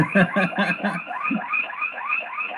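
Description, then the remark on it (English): An electronic alarm rings out in a fast, repeating pattern of warbling, chirp-like tones, fairly loud and steady, with a burst of harsher pulsing beeps at the start. “Sorry, my alarm's going off.”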